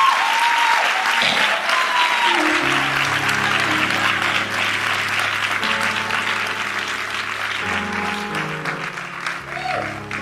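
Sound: audience clapping hands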